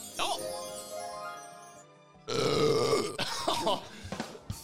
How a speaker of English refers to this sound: He burped as well. I didn't burp, mate. No, I didn't.